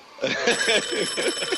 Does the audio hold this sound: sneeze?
no